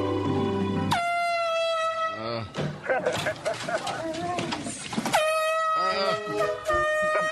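Loud, sustained air horn blasts, blown by a woman at a cocktail party to interrupt a man while he is talking: one at the start, another around the middle and a third near the end, with a chaotic burst of shouting and noise between them.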